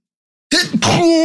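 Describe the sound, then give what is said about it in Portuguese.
A single loud, harsh sneeze after a brief silence: a sharp breathy burst, then a forceful voiced blast with a strained, slightly moaning tail. “Peraí que eu preciso espirrar.”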